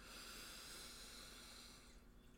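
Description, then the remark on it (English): A single slow, deep inhale during a guided meditation: a steady airy rush of breath lasting about two seconds before it tapers off, soft with no talking. “Let's take a nice deep breath in.”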